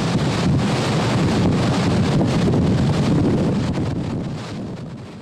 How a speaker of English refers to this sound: And this is one of the worst hurricanes I've ever been in, and maybe the worst as far as covering. Over 25 years and 90 storms, to be right in the eye wall of a high-end Cat 4, and the wind, let's just listen to the wind.